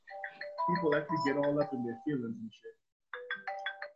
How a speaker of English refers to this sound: it's my phone